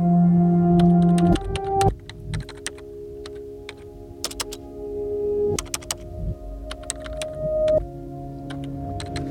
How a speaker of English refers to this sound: She stares at the upright, blinking line that is the door for words to walk out of, lifts her fingers to the keys, and pushes down.